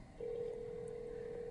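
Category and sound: signal or alarm, telephone dialing tones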